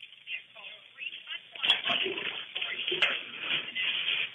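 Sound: water being drained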